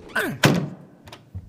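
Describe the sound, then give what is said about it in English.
A door swings shut with a solid thunk as Bufkin gets the door for Boy Blue, followed by a brief rattle and a couple of softer knocks as it settles. “Bufkin, could you get the door for us?”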